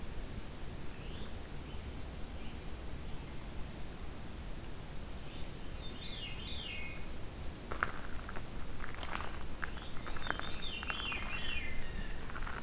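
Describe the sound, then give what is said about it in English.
A Veery thrush sings a few breezy, spiraling phrases that swirl downward, repeated several seconds apart over a steady background hiss, with occasional rustling and clicks near the end. “This is the thrush with the veer call, thus Veery.”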